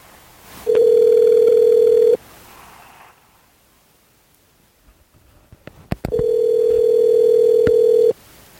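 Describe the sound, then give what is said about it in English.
A telephone tone sounds while a call is placed to Chuck: two long, steady electronic beeps, each about two seconds, separated by a quiet gap of several seconds with faint clicks. Loud, no talking. “Now the key is, will I be able to get Chuck on the phone?”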